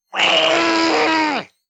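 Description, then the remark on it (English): A man, the Penguin, lets out a single loud, strained cry of pain as the Joker steps on his bullet wound, about a second and a half long, held steady on a harsh tone before its pitch drops away at the end. “Joker steps on Penguin's bullet wound and the Penguin screams.”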